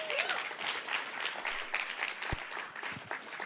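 A church audience applauds together as a woman is invited up to share a story, a dense, steady wash of many hands clapping with scattered sharper claps and a faint murmur of voices underneath.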